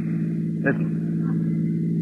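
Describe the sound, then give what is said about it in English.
A steady, low engine drone of approaching cars, probably police cars, hums throughout, with a brief louder rush partway through and faint voice-like sounds in the background. “That sounds like cars. Probably police cars.”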